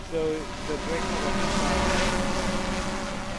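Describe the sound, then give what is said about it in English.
A quad-rotor UAV with a vision computer and fisheye-lens camera, being test-flown by a KAIST research group, produces a loud, steady whirring buzz from its rotors that holds constant for a few seconds, with a faint tonal hum briefly rising near the start. “KAIST, is where Shim Hyun Chol, head of the Unmanned Systems Research Group, and his students are testing their quad-rotor UAV.”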